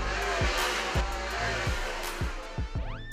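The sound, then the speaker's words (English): Race cars burning high-octane fuel roar around a racetrack during an auto race in a steady wash of engine noise, with several quick whooshing passes roughly every half second and a rising engine whine at the end. No one speaks. “The smell of burnt high-octane fuel as a car rounds the track?”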